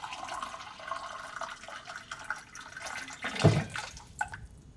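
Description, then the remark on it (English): Water runs steadily from a kitchen tap into a glass, a soft continuous trickle, with a brief louder splash near the end before it tapers off. No one speaks. “After an hour of tossing and turning, she finally decided to get up and get a glass of water, hoping it would settle her enough to fall asleep.”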